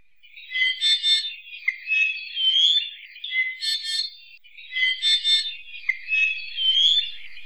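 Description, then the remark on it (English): An ʻiʻiwi, a Hawaiian honeycreeper, sings its rasping, squeaky-gate-like song in repeated creaky phrases with brief pauses between them, clear, with no other sounds around it. “The Eevee sing a huge repertoire of songs, the most famous of which sounds a bit like a squeaky gate.”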